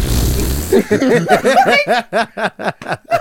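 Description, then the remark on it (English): A short, rough, low fart blurts out right at the start. Right after it, a burst of rapid, pulsing laughter follows in a steady rhythm, fairly loud. “How am I supposed to continue speaking to you when you let that loose? No, that's nasty, like, man.”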